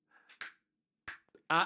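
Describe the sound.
Two crisp finger snaps ring out about half a second apart, each a short, sharp crack with a quick decay, followed by a brief burst of a voice.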